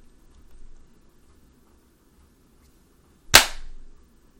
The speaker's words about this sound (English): Yeah. I mean, I clapped. I see it on my waveform.